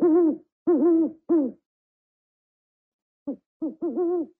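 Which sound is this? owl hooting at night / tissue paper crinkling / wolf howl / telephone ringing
owl hooting at night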